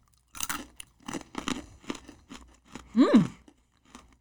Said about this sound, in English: It's a very satisfying crunch. When you think peas, you think squishy. It's very crunchy.